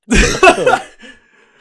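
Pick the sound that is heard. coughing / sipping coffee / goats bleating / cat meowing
coughing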